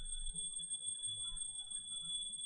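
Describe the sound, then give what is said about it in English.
A small bell rung quietly by the pujari, its thin high tone holding steady with a faint overtone above it, over a low soft rumble, with no one speaking. “Pujari, please ring the bell quietly.”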